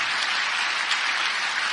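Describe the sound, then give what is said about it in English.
A church audience claps together as a clap offering to the Lord, in a dense, steady burst of applause, many hands overlapping into a bright, even wash of sound with no voices. “Well, let's give the Lord a clap offering for that.”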